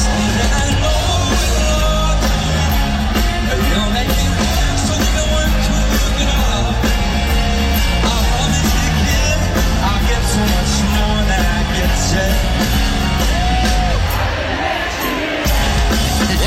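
Loud, dense live band music with heavy low end and a steady driving beat during a headlining set at the Outside Lands festival on Saturday, crowd yells and cheers blending into the wash of sound throughout, dipping briefly near the end.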